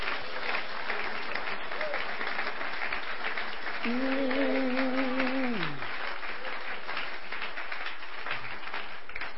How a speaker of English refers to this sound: Let's clap our hands in Jesus' name.